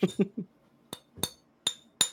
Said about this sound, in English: Maybe when you do the bottle, you should just like clink it. Like clink it against like the side of the mic